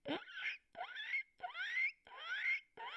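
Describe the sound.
A voice imitating the guinea pig-like call of spring peepers, small frogs: a run of five shrill, rising squeaks in quick, even succession, each sweeping upward in pitch with brief gaps between.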